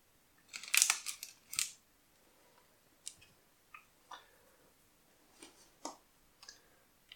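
A knife cutting lengthways all the way through a tray of brownies: a cluster of crisp scrapes near the start, then scattered quiet clicks and taps against the pan, with no talking.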